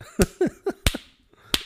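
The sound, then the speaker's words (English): Five or six sharp, fleshy hand slaps imitating a knife slapping a steak land in an uneven rhythm, a quick cluster followed by a pause and one last smack, with no talking. “But he picks up his steak while he's eating and he's slapping it with his knife like it's a fucking like ass.”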